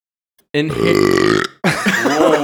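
A loud, drawn-out belch rumbles close to the mic for about a second, then after a brief pause a second long, gravelly burp follows.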